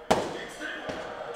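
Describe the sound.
Fireworks being set off by the people at a house: a sharp firework bang pops out, followed moments later by a softer second burst, with murmuring voices and background noise carrying on underneath.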